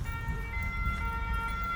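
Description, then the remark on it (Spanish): A French police car siren holds a steady, bright tone over a low rumble of traffic, fairly loud and continuous throughout the short stretch, with no one talking. “Las patrullas francesas.”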